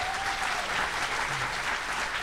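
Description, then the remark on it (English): A live audience at the Grand Theater in Cartersville, Georgia, claps steadily as people from Cartersville and Bartow County answer by applause, a dense, even wash of many hands at a constant loudness for a couple of seconds with no voices over it. “Give us just applause.”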